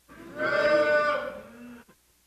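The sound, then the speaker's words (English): A crowd of people imitates a cow, joining in one long, loud, drawn-out "moo" that swells, holds for over a second, then tails off into a brief quiet. “When you get there, say moo.”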